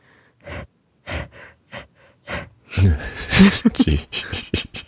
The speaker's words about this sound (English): There's not a fan or something in the background, is it? I thought I heard something, but... No? Maybe I'm just breathing heavily.